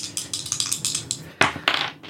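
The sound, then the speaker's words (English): Dice clatter and rattle in a quick burst of bright, hard clicks, ending with a louder knock as one drops to the floor, followed by a couple of sharp bounces. “Oh, I had one hit the floor.”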